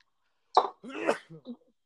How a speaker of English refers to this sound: Someone's sneezing.